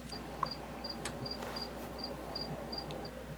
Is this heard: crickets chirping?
yes